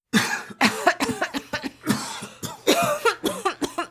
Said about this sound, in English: Both wake coughing and gasping for air.